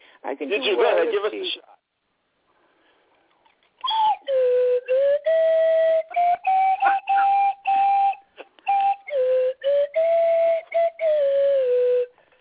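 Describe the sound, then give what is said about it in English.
A slide whistle plays a bluesy tune, its pure tone swooping and bending between notes in short phrases, after a brief burst of noise and a pause. “That was the slide whistle.”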